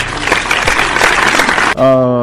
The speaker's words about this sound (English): Without further ado, let's make welcome our guest. Yeah, round of applause for her.